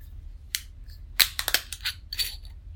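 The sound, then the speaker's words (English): A black glass wine bottle being opened: a quick series of sharp crinkles, scrapes and glassy clicks, loudest around the middle, with no one talking. “So all right, well, I'm gonna crack this open so we can try it.”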